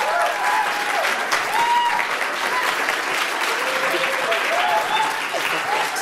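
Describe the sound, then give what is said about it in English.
Sustained applause from a sizable audience for a speaker who has just finished her talk, a dense steady patter of clapping hands, with faint voices murmuring beneath it throughout. “Tried to get her to stay up there and accept that applause from all of you, but she was happy to be done with that thing, I think.”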